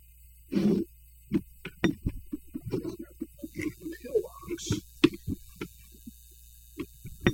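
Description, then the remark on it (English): A clothes dryer with towels in it runs with a steady, low droning hum throughout, continuous in the background while people talk over it. “Oh, yeah, I forgot I have all my towels in the dryer right now.”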